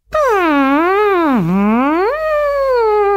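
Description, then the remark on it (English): A human voice imitates the song of the southern right whale with one sustained, moaning tone that swoops down, dips low, then rises and levels off. It is loud, rich in overtones, and lasts about three seconds with no talking. “And I am now going to perform for you the haunting song of the southern right whale.”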